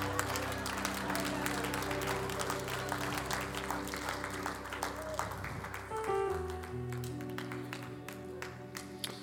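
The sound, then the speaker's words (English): An audience applauds with dense, steady clapping over sustained organ chords; the applause stays loud and continuous throughout, and the held notes shift to a lower chord partway through. “I don't care if you clap.”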